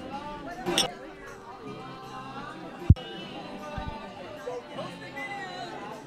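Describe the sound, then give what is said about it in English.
Dense crowd chatter at a wedding reception, a steady hubbub of overlapping voices with occasional clinks of glassware and a sharp knock partway through. “I can't believe that I'm here at this wedding.”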